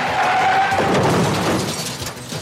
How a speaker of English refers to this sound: When they're driving and they're trying to run Fletch over and they crash the car into the wall. Have you ever noticed how the whole front end of the car just absolutely crumples? Like an accordion.